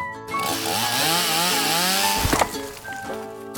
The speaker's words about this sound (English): So what's a chainsaw doing on a farm? Well, not all farmers grow food. Some farmers grow trees, and they cut them down with chainsaws.